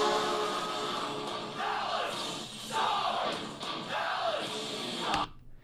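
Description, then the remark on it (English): A loud, sustained hockey goal horn for Dallas blares over a roaring arena crowd, with rhythmic cheering swells rising roughly every second before the sound cuts off abruptly near the end. “That's an automatic good horn.”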